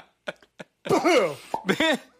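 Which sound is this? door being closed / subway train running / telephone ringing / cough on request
cough on request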